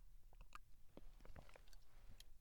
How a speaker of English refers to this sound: And so let me just take a sip of my ketone coffee for a hot second.